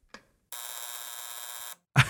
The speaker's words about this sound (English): God, I love that buzzer.